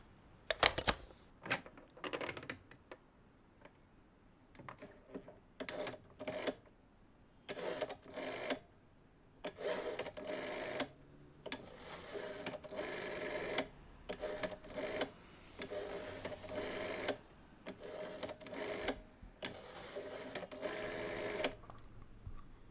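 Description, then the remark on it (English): A telephone being dialed: a series of mechanical whirring and clicking bursts of varying length, separated by short pauses, like a rotary dial spun and returning for each digit. No voices. “I know someone who just might have an answer to that part of the puzzle. Hand me the phone,”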